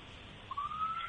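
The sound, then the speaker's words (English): A police car siren begins partway through, a single high wail sweeping slowly upward in pitch over a steady background hiss, fairly faint, with no voices. “So maybe that's the cops right there coming to get you.”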